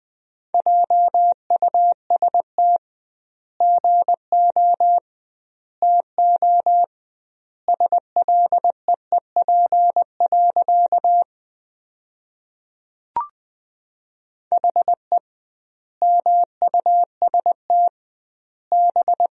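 Morse code sent as a steady mid-pitched tone, sentences built from the top 500 words keyed at 20 words per minute with doubled word spacing: quick bursts of dots and dashes separated by extra-long word gaps, with a brief click midway and no voices.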